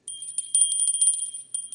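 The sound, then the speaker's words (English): A bright, high-pitched bell rings continuously in rapid repeated strikes to mark round two, sustained and fairly loud with a sharp metallic shimmer, with no voices. “Nothing else that'll keep you awake, that bell, won't it?”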